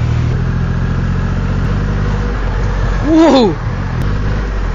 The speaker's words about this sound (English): For something on two wheels that's just carrying me, this has got a 2.5 litre engine. That's bigger than most cars.